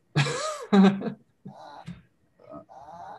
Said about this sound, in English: That sounds like a croaking sound, honestly. Know, that's the pug, isn't it? I can tell that's a pug. It's like a reverse sneeze.